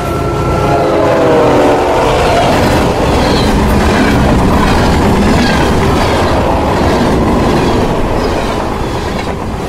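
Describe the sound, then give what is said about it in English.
A freight train roars past, its wheels clattering and rumbling steadily, with a horn blaring briefly at the start. No one speaks. “Mum was hit by a freight train the next week.”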